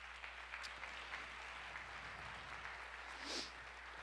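An audience claps steadily, a dense wash of many hands applauding at an even level for several seconds, with no one speaking over it.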